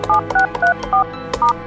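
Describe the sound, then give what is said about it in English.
Five quick touch-tone telephone keypad beeps, each a short dual-tone burst in a brisk, slightly uneven rhythm, with faint button clicks between them and no voices, as a password is entered to listen to phone messages. “To listen to your messages, enter your password and press the star key.”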